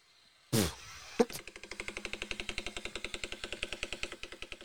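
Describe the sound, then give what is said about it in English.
A giant bird's deep clicking call: after a loud burst and a sharp knock, a steady, rapid train of low, rattling clicks pulses on like an idling diesel engine. “Could you imagine walking in the woods one day and you just see this giant fucking bird?”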